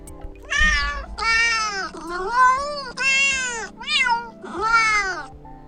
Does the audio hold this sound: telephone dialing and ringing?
no